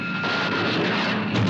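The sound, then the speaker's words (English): A dense, continuous roar of gunfire and explosion effects as a toy model boat is hit in a filmed model scene, a loud rumbling barrage with no pauses and a faint steady whine running underneath, no voices. “Oh no, they hit the toy boat. Got him! Yeah, that explosion.”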